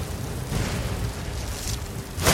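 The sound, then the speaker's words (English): A video game blast from the dragon Alduin attacking from the sky roars as a steady, rumbling wash of bass-heavy noise, then flares into a sharper, louder burst right at the end. No one speaks. “Man, we are getting blasted by the sky. Blasted by Alduin.”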